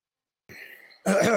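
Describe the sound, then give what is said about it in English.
Someone clears their throat, starting with a short raspy rumble and finishing in a louder, harsher burst after a brief pause. “Clear your throat, frog.”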